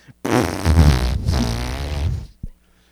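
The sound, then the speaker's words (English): A long, steady, buzzy fart noise, apparently blown by mouth, lasting about two seconds, loud, ending with a brief sputter and no talking. “I just assume that, like, when you hear me talk, it's just like a long, constant fart.”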